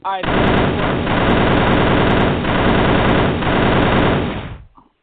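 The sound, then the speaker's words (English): A loud, rapid automatic gunfire sound effect rattles continuously for about four and a half seconds, a dense burst of shots that cuts off abruptly. “I do want to apologize to anyone who will be listening to this at work and then randomly hear gunshots and think that it's not safe around them.”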